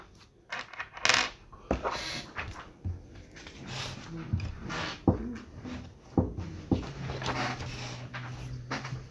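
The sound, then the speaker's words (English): Dice rattle and clatter across a hard tabletop in a series of sharp clicks and taps that come in irregular bursts, with a faint murmur of voices in the background. “You roll some dice and it's opposed to the casting.”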